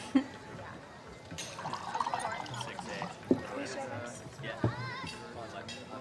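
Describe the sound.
Wine pours steadily into glasses, with a few sharp glassy clinks, while a murmur of voices and restaurant bustle fills the background.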